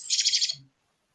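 A sparrow chirping sound effect plays: a quick burst of high, rapid chirps, about five pulsing notes packed into half a second, fairly loud, then silence.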